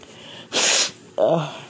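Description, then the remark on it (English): A single sharp, hissy sniffle lasting under half a second, from a person reacting to cold weather, followed a moment later by a short voiced sound as someone starts to speak. “Sorry about the sniffling and whatnot.”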